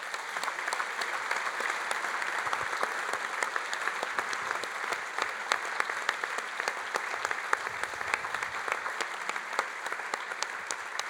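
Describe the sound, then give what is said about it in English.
A church audience applauds steadily for about eleven seconds, a dense, even patter of many hands clapping at a consistent moderate loudness with no voices standing out. “Let's start by just giving them a round of applause.”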